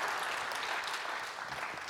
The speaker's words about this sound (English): Yes, give the Lord a hand clap of praise.